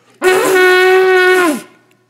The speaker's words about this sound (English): I have worked tirelessly trying to play this. Is that how you say it? What do you play? I play the shofar. I can't figure this thing out. If you don't do it right, it sounds like a dying elephant.